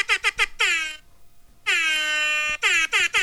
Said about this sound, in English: It's called Ham Horn. Yeah, it is. That's the Air Horn app. It's called Ham Horn. It's not called the Air Horn app. Well, I'm describing it as the Air Horn app. I like the ham horn. All right, it's time for that trusty old ham horn.